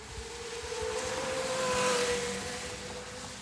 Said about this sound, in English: We've also got a Carrera GT that's about to fly down the straight. I'm hoping it's going to fly down the straight and it's not going into the pits. He's coming past. Right, listen to this V10 sound.